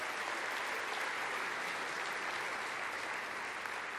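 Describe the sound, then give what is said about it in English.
A church audience on Mother's Day applauds families who dedicated their children that day, steadily for the full four seconds, a dense wash of many hands clapping at once with no pauses and no voices breaking through. “Give our families who dedicated their children today a big round of applause.”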